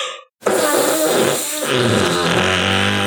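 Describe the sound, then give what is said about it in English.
A hand fart rips loudly for nearly three seconds, a sustained buzzy, sputtering squelch with slightly wavering pitch after a brief silent pause. “That was a terrible hand fart.”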